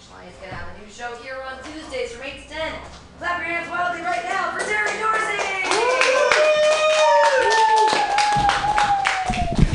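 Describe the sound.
A crowd claps wildly, with whoops and cheering voices rising over dense, steady applause that swells louder through the second half.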